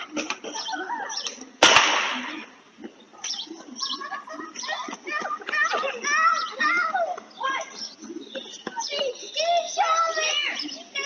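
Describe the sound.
Children's voices chatter and shout outdoors as a single loud, sharp gunshot cracks out early on, its echo fading quickly before the kids' playful voices carry on.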